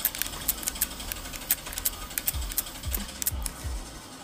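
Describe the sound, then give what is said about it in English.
Rapid, uneven bursts of sharp mechanical clatter of automatic gunfire from a helicopter shooting at the player in a video game, with low thumping booms falling in pitch toward the end. No one speaks. “Great, now I'm getting shot up by a helicopter.”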